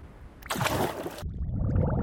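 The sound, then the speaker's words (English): A bubbling water sound effect as a treasure chest is opened: a short bright splashy whoosh, then steady low gurgling bubbles that continue fairly loud to the end, with no voices. “Uh-oh! Bubbles! Can you help me pop them?”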